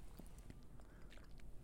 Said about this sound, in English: Sorry, I needed a sip.